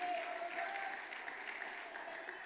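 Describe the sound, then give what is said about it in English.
An audience claps their hands in a steady, dense wash of applause that holds at an even, fairly loud level throughout, with a faint sustained tone underneath early on. “Can somebody, amen, lift up your voice with that hand clap?”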